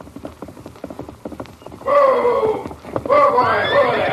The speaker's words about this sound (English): Someone come. It's a Palomino.